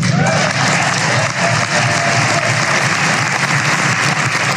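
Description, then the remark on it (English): Sustained applause from a large audience at a dinner, responding to a line that the president was attending it for the first time in 6 years; a dense steady patter of clapping that stays loud for several seconds, with some crowd murmur mixed in. “Wow, that got a lot of applause for this.”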